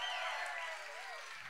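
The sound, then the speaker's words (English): An audience bursts into steady, dense applause, many hands clapping at once with some cheering voices mixed in, swelling for a moment before easing slightly. “God, that was the most pitiful clap I've ever heard.”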